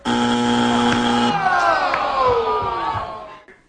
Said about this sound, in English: I don't even know what that is, just give me the buzzer.